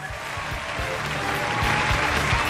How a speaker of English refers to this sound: Give them the applause.